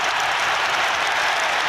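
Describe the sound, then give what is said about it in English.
A football crowd roars in celebration of Wijnaldum's goal for Newcastle against Aston Villa. The cheering and clapping form a dense, steady wall that stays loud and unbroken throughout, with no single voice standing out. “And then there were some cheers because this happened.”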